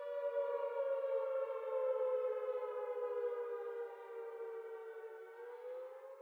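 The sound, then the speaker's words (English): A civil defense siren, the cuckoo alert or cuckoo alarm sounded along a stretch of coast during the World War, wails in one long, steady, slightly wavering tone for several seconds. It stays loud throughout and eases a little toward the end, with no voices. “And yes, of course, he would hear the siren, that infamous sound that we all know and dread, but his stretch of the coast would also sound another, separate siren, known as the cuckoo alert or cuckoo alarm.”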